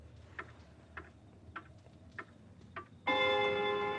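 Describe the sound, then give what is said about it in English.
A grandfather clock ticks slowly and steadily, five crisp ticks about half a second apart, before a loud, rich chime suddenly rings out and sustains to the end. “wanted a very specific sort of a grandfather clock that had the arm because he had a sequence in mind where time essentially stops, which you'll see here shortly.”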